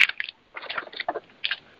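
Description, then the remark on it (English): A paper bag from the grocery store rustles and crinkles in several irregular, crackling bursts with short pauses between them, moderately loud, with no voices. “What is that noise? It's a paper bag that we got at the grocery store.”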